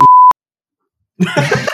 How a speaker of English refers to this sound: Okay. Delete that section. I'll just bleep. I'll bleep the important bit.